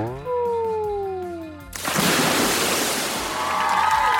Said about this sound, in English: Want to see me splash? Okay, here goes.